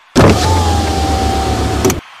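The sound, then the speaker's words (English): A car's electric window whirs steadily down for about two seconds with a motor hum, starting abruptly and ending with a soft clunk as it stops. “I suggest you wind your window down and wave”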